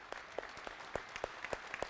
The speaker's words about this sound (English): Could I ask for everybody to put their hands together and applaud our mothers in this room? Can we do that?